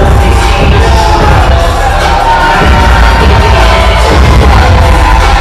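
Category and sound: crowd, wrestling crowd booing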